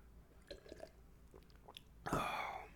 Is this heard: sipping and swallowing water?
yes